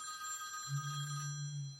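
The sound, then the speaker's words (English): A telephone rings with a steady, sustained electronic tone, fairly loud, and a low droning hum joins in partway through. “The president's calling. Yeah, that was the bat phone.”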